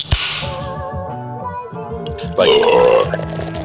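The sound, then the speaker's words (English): A loud, drawn-out burp rumbles for a few seconds, swelling into a louder, rougher burst near the end, with no talking. “It happened. Thundering burp.”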